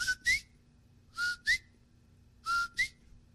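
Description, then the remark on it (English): Someone whistles an imitation of the call of the coqui, a frog of Puerto Rico in the Caribbean, three times, each a two-note "co-qui": a steady note followed by a higher, upward-sliding note, repeated at an even pace. “Where the ancient people used to worship that frog and called it a coqui for the sound it makes.”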